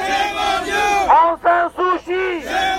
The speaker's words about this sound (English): There are two huge crowds gathered, one to support Myanmar and its leader, Aung San Suu Kyi, the other one to hurl abuse at her.